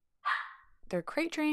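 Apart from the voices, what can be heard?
dogs barking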